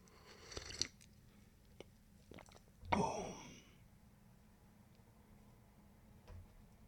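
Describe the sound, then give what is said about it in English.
Someone takes a quick slurping sip of tea, with a few soft clicks and cup or mouth noises around it; otherwise quiet. “Quick sip of tea, balls. Don't mind me, balls. Quick tea break.”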